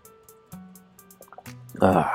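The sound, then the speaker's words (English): Someone drinks water: a few soft wet sips and small liquid clicks, then a louder gulping swallow near the end, over a faint steady background hum. “Excuse me, I have to drink water, okay?”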